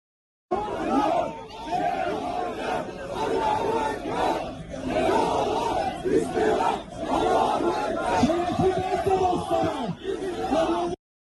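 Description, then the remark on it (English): A large crowd of protesters gathered near the Israeli consulate in Turkey shouts and chants together in a dense, continuous roar, with overlapping voices rising and surging throughout, sounding loud. “Now to Turkey, where a large crowd gathered near the Israeli consulate.”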